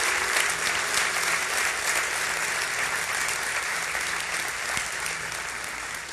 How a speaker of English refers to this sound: In fact, let's give a big hand clap to all those who raised their hands. I know you don't know who they are, but come on, let's give them a hand clap.